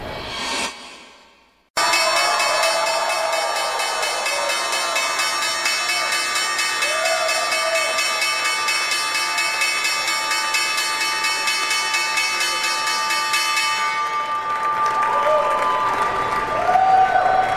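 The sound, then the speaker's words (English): A loud electric opening bell at the New York Stock Exchange rings continuously for about twelve seconds, marking the market open, with applause and cheering from a crowd mixed in beneath it; clapping carries on after the bell stops. “That was the opening bell for the final time this week, and a positive open for U.S.”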